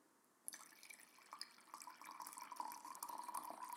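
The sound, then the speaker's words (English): After a brief quiet moment, tea starts pouring into a cup: a steady splashing trickle that grows fuller and louder as the cup fills. No one speaks. “Now, I do enjoy the sound of the tea pour.”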